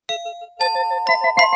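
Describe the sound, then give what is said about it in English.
A doorbell rings with a clear ding-dong chime, two bright tones with sustained ringing overtones, followed by a couple more quick chime strikes, fairly loud with no voices. “Of course, if they've shot you and blown you up, there's not much point in ringing the doorbell.”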